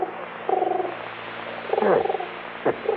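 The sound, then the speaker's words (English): A pigeon on a windowsill, looking for food, coos in a few low, throaty bursts, one note sliding downward, over a steady low hum, with no talking. “How about that? Pigeon on the windowsill. Yeah, looking for food.”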